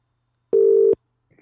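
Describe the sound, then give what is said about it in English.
A single steady electronic ringback tone from an outgoing phone call placed from the caller's own phone sounds for under half a second, clear and fairly loud, then cuts off, followed by faint rustling. “Let's try him. Okay. He's ringing. He's ringing.”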